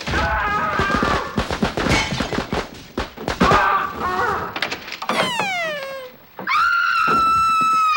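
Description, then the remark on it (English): Cactus pops all the balloons filling a closet in a rapid, irregular barrage of loud, sharp bangs lasting several seconds, followed by a long, wailing, downward-sliding yowl. “Cactus popped all the balloons in the closet.”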